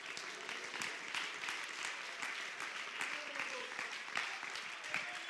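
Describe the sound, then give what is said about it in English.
A crowd claps steadily in praise, many hands blending into a dense, continuous patter with a few sharper claps standing out, while faint voices murmur underneath. “Well, clap your hands and praise him.”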